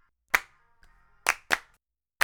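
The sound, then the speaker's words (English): Four sharp hand claps on a recorded clapping track land at uneven intervals, crisp, each trailing a short ringing decay. A faint soft sound, the clapper's breathing, sits between the first and second claps, and no one speaks. “And on all of these tracks, you can probably hear me breathing, even on the clapping.”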